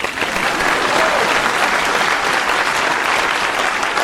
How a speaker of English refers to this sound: Please clap.